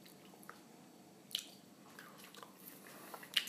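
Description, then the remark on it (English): Quiet crunchy chewing of pork crackling: soft, wet mouth clicks and squishes punctuated by two sharper, brittle crunches, with no talking. “That crackle was excellent.”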